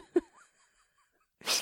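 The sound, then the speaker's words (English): A single sharp, loud sneeze bursts out near the end, preceded by a brief catch of breath and a few soft background sounds. “God bless you.”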